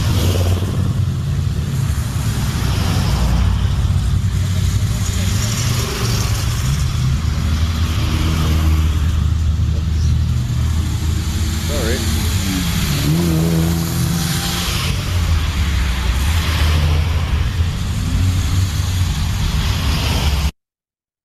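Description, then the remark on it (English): A car engine roars loudly and steadily throughout, revving up with rising and falling pitch sweeps midway as race cars roll through and accelerate; no one speaks. “It's a hazard car.”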